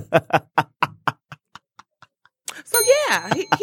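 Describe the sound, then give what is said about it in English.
A hand bell dinged rapidly about ten times in a quick, even rhythm, the strikes growing softer until a man's voice begins talking. “I'm going to ding the bell on that.”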